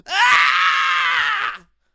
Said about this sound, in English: One more scream, or are you sure that's just …'s constipation scream?